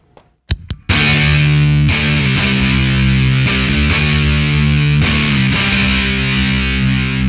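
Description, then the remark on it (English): A heavily distorted electric guitar played through an effects pedal, after two quick plucked hits, rings out in loud, sustained chords with a thick buzzing tone, shifting chords every second or so. No one speaks. “And I'm sure you can dial up the sizzle and the burn.”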